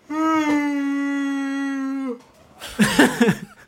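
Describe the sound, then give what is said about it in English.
An exaggerated, loud yawn: one long voiced groan held at a steady, fairly low pitch for about two seconds. After a short pause, a brief burst of voices follows. “That's an attention yawn if I've ever seen one.”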